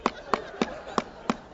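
Five sharp knocks land in a steady, slightly uneven rhythm, someone rapping on a door. They are moderately loud, with no talking around them.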